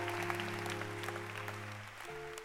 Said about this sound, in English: Can you clap? Is it possible to clap on Sundays? I know we can clap on Wednesdays, but Sundays.